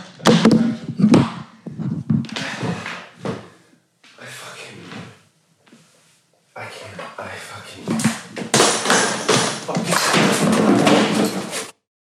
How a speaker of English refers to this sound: dropping the mic and aggressively walking toward the camera, intentionally knocking various equipment to the ground on his way.